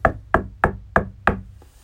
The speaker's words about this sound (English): All of a sudden, there was a knock at the door.